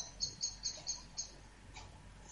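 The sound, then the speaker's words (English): A bird outside an open window chirps in a quick run of five or six short, high-pitched tweets, then one more after a brief pause, over a low background hum with no talking. “There might be a bird outside the window.”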